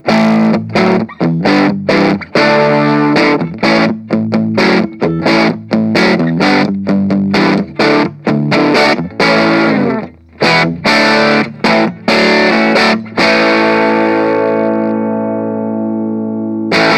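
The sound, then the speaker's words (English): Electric guitar through an amp's clean channel, its single gain knob pushed up into crunchy overdrive, playing strummed chords and choppy riffs with a gritty breakup, ending on a sustained ringing chord that fades slowly. “That's a very usable crunch sound, just with a tweak of the knob there.”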